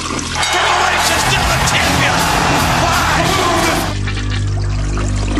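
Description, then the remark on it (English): A toilet flushes loudly, with a burst of rushing water for about three seconds before it drops off to a low gurgle over a faint background hum. “Man, that bathroom is really loud this week. It's overflowing.”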